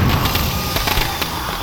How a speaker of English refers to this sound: Firecrackers send one of my predators spinning over a pagoda roof.